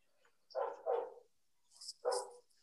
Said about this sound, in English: Wow, somebody's dog completely has an issue with that.